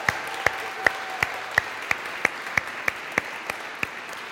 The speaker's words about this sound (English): Can we just have another round of applause